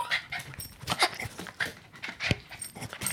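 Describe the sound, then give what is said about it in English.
A dog sniffs in a rapid, uneven run of short breathy snuffles, with quick inhalations and faint panting filling the few seconds, and no voices. “So, do the sniff.”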